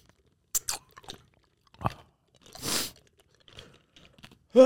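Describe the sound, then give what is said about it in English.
Several sharp crunches come in irregular bursts with quiet gaps between, as ice from a glass of ice-cold water is bitten and chewed in the mouth. “Bro, as soon as the ice thaws out and I swallow it, the water comes back.”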